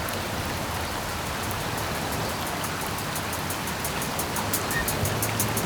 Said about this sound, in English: Oh no, we're outside the radio station getting soaked in the rain. Listen closer, brother. The rain's the most righteous thing we have.